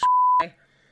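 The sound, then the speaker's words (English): A steady, high-pitched censor bleep lasting under half a second cuts over a word, with brief bursts of speech at its start and end, then a faint voice trails off. “I'm gonna have to bleep that too.”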